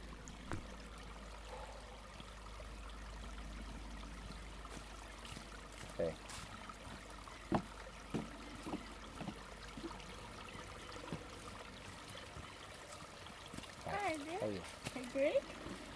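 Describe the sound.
A small stream trickling out from a kettle lake up the hill flows steadily, a continuous watery hiss broken by scattered drips and splashes, with a brief murmur of voices near the end.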